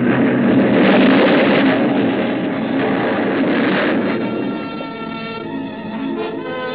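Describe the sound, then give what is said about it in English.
A ship smashes onto a reef in fog and explodes: a loud, continuous roar of crashing and rumbling blasts with grinding, groaning tones, easing slightly toward the end. No one speaks. “The force of the explosion hurled me into the blood-warm waters.”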